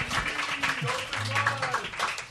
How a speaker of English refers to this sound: You guys want to all clap at once for the world famous comedy store, huh? Yeah. Fuck yeah.